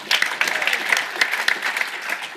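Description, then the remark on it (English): A crowd claps steadily, a dense patter of many hands sustained throughout at moderate loudness, an event audience giving a round of applause for the volunteers. “round of applause for those peas.”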